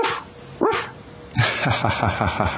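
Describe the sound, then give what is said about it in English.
A person does a high, yappy imitation of a small puppy dog barking: one sharp rising yip, then a rapid run of quick little barks, fairly loud. “At the same time, I know I can certainly be arrogant and, you know, you're kind of a nice little puppy dog.”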